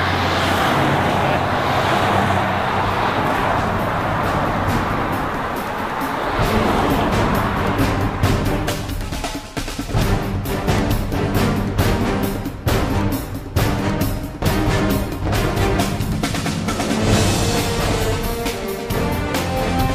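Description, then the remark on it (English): Steady, loud engine and road noise from a car in motion, with wind rushing past. It later breaks into choppy, pulsing bursts as the vehicle keeps driving. No one speaks. “I have to say, it didn't look half as cool as it actually felt driving those cars.”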